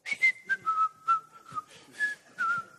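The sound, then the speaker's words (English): A person whistles a simple tune, the pure tone sliding between a few steady pitches in short phrases, with soft breathy noise around each note and no talking. “He's whistling.”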